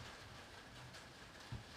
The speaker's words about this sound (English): I'm standing outside in a rainstorm in my screen and porch, getting these ads out for you freaks. Doing it in the rain, in a storm.